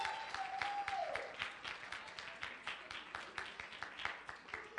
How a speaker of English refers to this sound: Let's give a great round of applause for our judges.